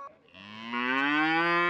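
A single cow moos loudly, a long, rich, droning low that swells in volume and holds steady to the end, with no other sounds around it.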